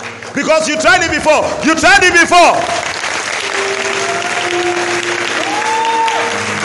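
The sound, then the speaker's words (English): An audience claps their hands in a steady, dense wash of applause to confess Jesus as their righteousness. A loud, animated voice rises over it in the first few seconds before the clapping continues alone. “Only those who are going to confess Jesus as their righteousness are clapping their hands.”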